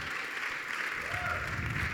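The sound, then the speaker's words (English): A church audience applauding steadily, dense continuous clapping with a few faint cheers mixed in, fairly loud and sustained throughout. “You guys are an excited crowd.”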